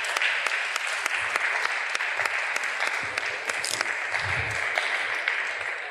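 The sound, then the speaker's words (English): Steady audience applause for volunteers coming forward, lasting about six seconds, a dense wash of many hands clapping at an even loudness with sharper individual claps popping through, and no voices. “And folks, just to get them coming forward, give them a warm round of applause and thank them for coming forward in advance.”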